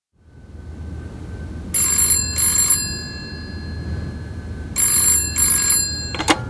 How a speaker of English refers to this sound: By the way, the red phone in your office, it's been ringing for the past 10 minutes.